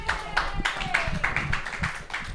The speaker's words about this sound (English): A big round of applause for me. Thank you very much.